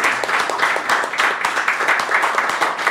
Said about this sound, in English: How about we give him a big round of applause?